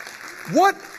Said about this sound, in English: I think there should be all kinds of celebration, all kinds of festivity. Come on, let's clap right now. Come on, Valley, let's make some noise and thank God.